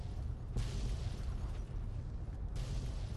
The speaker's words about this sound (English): There's a bunch of explosions. They're shaking my controller to beat the band, but they're not hurting me.